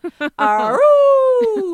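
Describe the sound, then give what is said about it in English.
A person imitates a dog howling: two quick yelping barks, then a single long, rising howl that holds steady and slowly trails downward, loud. “And then he'd go, then he would go and howl like a dog and get all the neighbourhood dogs to howl as well.”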